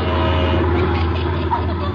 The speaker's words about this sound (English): A bunch of oil trucks coming through. You better get out of the way.